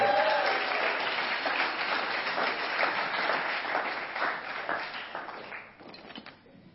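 A crowd applauds with dense, steady clapping that holds for several seconds, then thins out and fades as the clapping tapers off toward the end.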